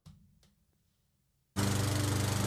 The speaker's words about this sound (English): Wow. It's grass mowing season. The lawnmower man has made a return.